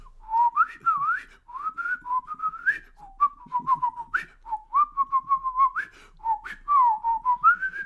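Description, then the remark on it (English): A person whistles a bird call imitation alone, in the style of Brian Alvarez: a steady run of warbling, swooping phrases with quick rising and falling notes and little chirpy breaks, sustained for several seconds at a bright, moderate loudness. “I can do bird calls in the style of Brian Alvarez now.”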